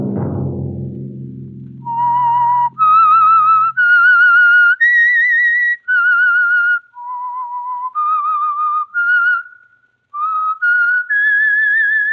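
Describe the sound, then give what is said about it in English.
A slow, haunting whistled melody, the theme of the radio drama The Whistler, of about a dozen sustained, pure notes that rise and fall, loud and clear, after a brief low tone that fades out at the start. No one speaks. “Next Monday at 9 o'clock, the Signal Oil program will bring you another strange tale by the Whistler.”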